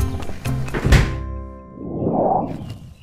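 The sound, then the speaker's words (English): A heavy time machine door unlatches with a loud, solid thunk and some mechanical clatter, then a soft hissing whoosh swells and fades as it opens. “Okay, now let me just open this door here.”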